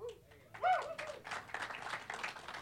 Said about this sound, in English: Don't clap for that shit.